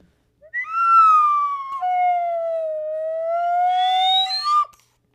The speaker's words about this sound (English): I mean, I do have this slide whistle here. Yeah, which makes a really creepy sound.